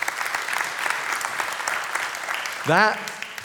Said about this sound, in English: That is, yeah, got a clap. Yeah, give him a clap. Super.